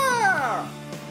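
A single cat meow, a bright drawn-out cry that slides downward in pitch and fades within about a second, with no talking over it.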